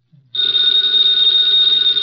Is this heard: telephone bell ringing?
yes